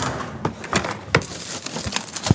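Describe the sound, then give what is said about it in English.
A stuck desk drawer is tugged repeatedly, giving several sharp wooden jolts and rattles at uneven intervals over a low, steady background hiss. No one speaks. “His desk drawer is stuck.”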